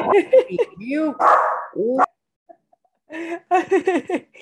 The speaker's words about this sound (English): That is my crazy dog.